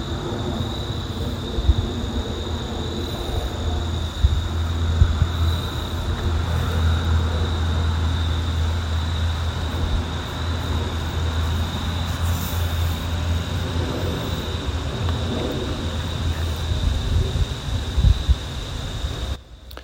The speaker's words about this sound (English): And there was a jet that we definitely should have gotten on file. I can still hear it going along its way.